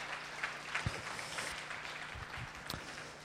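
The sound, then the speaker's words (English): A crowd claps together, a steady wash of many hands with a few sharper individual claps standing out, sustained and fairly soft throughout without any voices. “I want to give them a round of applause.”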